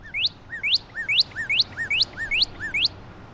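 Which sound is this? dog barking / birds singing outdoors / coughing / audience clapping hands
birds singing outdoors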